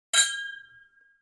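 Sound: glasses clinking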